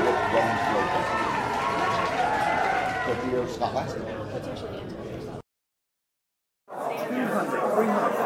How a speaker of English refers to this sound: I'll put some cheering in here for you.